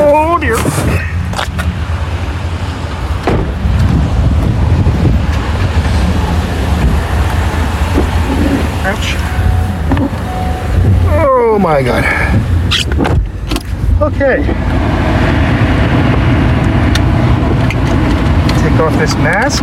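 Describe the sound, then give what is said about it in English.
A car rumbles past on the road, its engine and tire noise loud and steady over a constant traffic drone, with faint voices in the background. “Watch out, car, don't run me over, please.”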